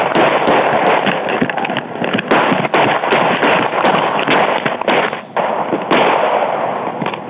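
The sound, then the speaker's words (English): A police officer fires 12 shots at an unarmed man, a rapid series of sharp gunshots cracking out over a loud, hissing wash of noise, the bangs coming in quick irregular bursts with no voices. “One of the officers fires 12 shots.”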